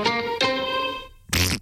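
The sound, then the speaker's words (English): A comic fart sound effect: two buzzy, harmonic blasts with a steady low pitch, followed by a short noisy, sputtering burst at the end. “Sorry for the delayed fart there, but you can just imagine I put it in the right spot.”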